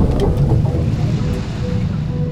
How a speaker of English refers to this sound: He's near the Azores. His boat, which also had structural problems, sinks.